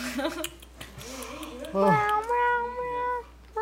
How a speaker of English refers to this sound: Apparently the cat knows how to sing. Shut up, that stupid cat! It's like Talking Tom. Apparently the cat knows how to sing. Sing louder! Let everyone know your beautiful voice! Very, very beautiful cat.